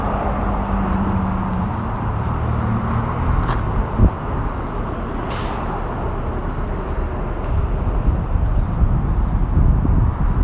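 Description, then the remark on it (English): Steady street traffic rumbles throughout as a person jaywalks across the street, with engines droning and vehicles passing, plus a brief thump partway through; no one speaks. “while I jaywalk so that I don't, you know, get ran over by a car or something stupid.”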